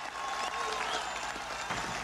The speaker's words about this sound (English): Please clap.